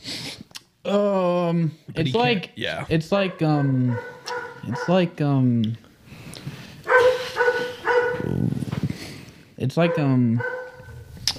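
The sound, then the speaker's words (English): A dog barks repeatedly and loudly in a string of short, yappy bursts, with people's voices mixed in between the barks. “That dog.”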